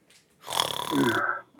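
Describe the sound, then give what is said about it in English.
A single drawn-out snore imitated by a voice, fairly loud, with a raspy, rattling buzz lasting about a second before trailing off into quiet. “Snore.”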